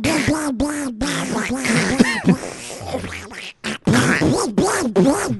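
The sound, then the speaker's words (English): A voice imitates the cartoon duck Donald Duck, producing raspy, buzzy quacking babble in a run of choppy bursts with brief gaps, fairly loud and with no clear words. “I wish any of us could do a Donald impression, but you get the idea. Donald voice.”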